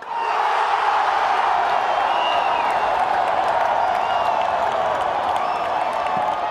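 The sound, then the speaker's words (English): A huge crowd at Morumbi Stadium in Brazil roars continuously during a football game between Brazil and Bolivia, a dense wall of cheering and shouting voices with faint whistles rising above it, steady and loud throughout. “I went to Morumbi Stadium to record a game between Brazil and Bolivia, and the crowd was insane.”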